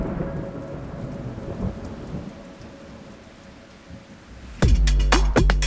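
Steady rain hisses and patters for several seconds, then a sudden loud crack of nearby thunder bursts in near the end and rumbles on over the downpour.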